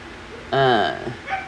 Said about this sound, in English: I do apologize for my puppy. She does not want to be in her kennel right now.